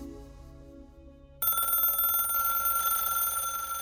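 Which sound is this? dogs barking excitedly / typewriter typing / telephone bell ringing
telephone bell ringing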